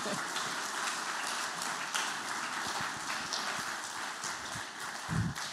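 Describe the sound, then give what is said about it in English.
A steady wash of crowd applause as panelists are invited onto the stage for a panel discussion, many hands clapping at once in a dense, even patter that holds at a constant level for several seconds with no voices rising above it. “And give them a warm, cooling hand of applause, actually, would be better.”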